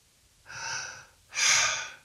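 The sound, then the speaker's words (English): A person takes a deep breath, an airy breath drawn in slowly, followed by a second, fuller and louder rush of breath, with no talking. “I take a deep breath.”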